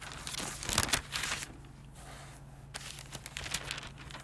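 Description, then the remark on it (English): Thin Bible pages rustle and crinkle as they are flipped to Revelation 22, in two clusters of quick, papery swishes with a pause between, fairly soft over a low steady hum, with no one speaking. “Revelation 22. Allow me to turn there for a moment.”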